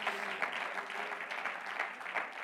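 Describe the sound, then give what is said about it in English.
An audience clapping their hands unto the Lord in the morning, a dense, steady wash of many overlapping claps with no pause, holding a fairly even loudness throughout. “Oh, clap your hands unto the Lord this morning.”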